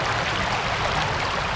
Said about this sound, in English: Almost immediately came a great glugging sound from the old village well, and with a huge spurt, water began to belch out.